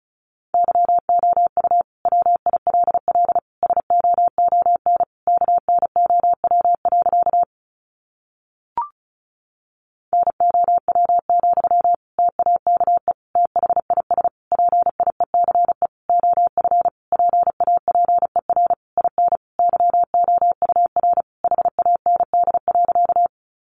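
Rapid Morse code at about 35 words per minute, sending practice sentences made from the top 400 words: a single steady mid-pitched tone keyed on and off in quick dots and dashes, broken once by a short pause with a faint click.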